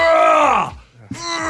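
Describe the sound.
A man lets out two loud, strained grunts while doing a bench press at a gym in California: a long groan that sinks in pitch, a brief pause, then a second effortful grunt.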